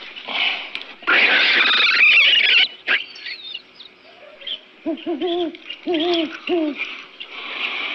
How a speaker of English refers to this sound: What was that? Weasel. Hoot owl must have got him. I thought you said they didn't make any noise. Only when they're dying